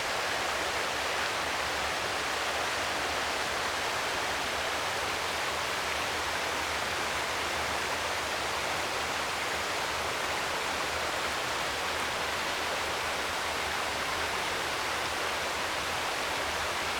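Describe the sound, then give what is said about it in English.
A steady, continuous rush of running water from the South Esk river, hissing evenly throughout at a moderate level with no voices or breaks. “How does the sound of cool running water affect how you feel?”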